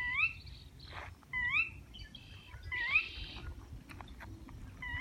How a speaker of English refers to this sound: We're walking along the Rio Grande outside Alamosa, and there's this really weird bird sound.